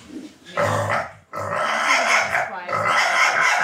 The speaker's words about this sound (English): The first pig is always the calmest because it doesn't know what's coming. So as the day goes on and we go through more pigs, they scream more loudly because they get agitated from the previous pig. This is about as calm as it gets.